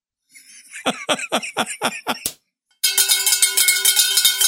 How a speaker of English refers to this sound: So more cowbell. More cowbell. Like that's not annoying. More cowbell.